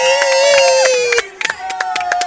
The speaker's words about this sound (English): Was that a good enough round of applause, or do you want me to do it again?